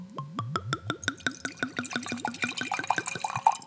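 Wine glugs steadily out of a bottle into a glass, a quick run of rhythmic gurgles whose pitch climbs as the glass fills, with no one talking.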